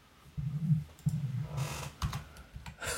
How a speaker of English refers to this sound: I hear some typing. I do now.